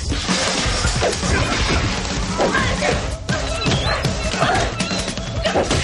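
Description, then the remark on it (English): A loud, dense run of punches and hard hits from a fight, smacks and thuds landing in quick irregular succession over a busy, noisy background, with voices mixed in. “I love that Chuck and Mei Ling's brother Lee are reacting to all the brutal punches and hits.”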